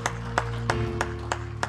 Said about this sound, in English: Clap your hands to the Lord as you're seated.